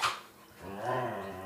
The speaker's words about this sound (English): The dog's having a wrestling match.